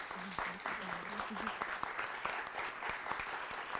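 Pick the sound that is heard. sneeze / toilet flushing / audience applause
audience applause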